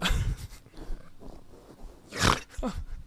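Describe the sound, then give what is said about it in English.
A person imitates a pig with a few rough, nasal snorts: one at the start, then two more close together near the end. The snorts are loud, with no talking. “You're part pig.”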